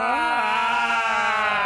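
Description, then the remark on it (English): A person imitates a Klingon death scream: one loud, sustained yell that rises briefly in pitch, then holds a steady, strained, harmonically rich tone for under two seconds. “But let's mark this momentous day by screaming for dead Klingons.”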